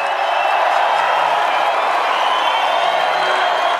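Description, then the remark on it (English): A crowd claps steadily and loudly for several seconds, a dense, even wash of applause with a faint murmur of cheering mixed in and no clear speech. “I bet you could straight up tell them that they're in a cult that fosters delusion and creates an identity crisis, and they just keep clapping.”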